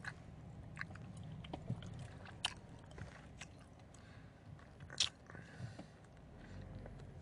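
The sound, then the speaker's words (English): A voice imitates a blonde woman's loud, wet gum chewing: irregular smacking clicks and squishy mouth noises repeat steadily for several seconds, with no words spoken. “She was chewing some gum. It sounded like the...”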